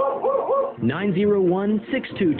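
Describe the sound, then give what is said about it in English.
A dog yips, then lets out a long, wavering whine and a few short whimpers, fairly loud, with no other sounds around it. “Oh, right. I'm the only one who understands dog language.”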